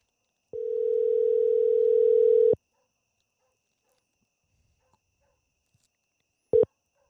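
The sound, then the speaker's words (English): An outgoing phone call rings: one steady two-second telephone tone, a few seconds of silence, then the start of a second ring cut short. Clear and fairly loud, with no voices. “Well, let's see if we can get Adam here on the phone.”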